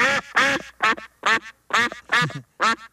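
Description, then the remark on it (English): About eight loud, buzzy, nasal quacks from a yellow duck-bill-shaped whistle of the kind handed out on duck tour rides, in a quick, uneven series with brief gaps between them and no talking. “The little yellow, it looks like, it's like a whistle almost, but it's just a yellow thing that looks like a duck bill, and it goes, it's not even a duck noise, it's that noise.”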